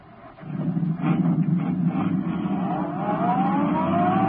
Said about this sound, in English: Turning onto the road, Britt Reed pressed down on the accelerator. Sedan sped along the concrete after Brinkley's car.